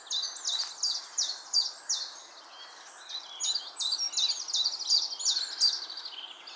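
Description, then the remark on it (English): A chiffchaff sings a steady series of bright, repeated high notes, evenly spaced and continuing throughout, clear against a quiet outdoor background with no voices. “I think that's the chiff chaff I hear.”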